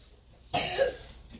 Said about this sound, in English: Some of us in here sick. I hear coughing over there. See, there, some of us in here sick have been, got some issues.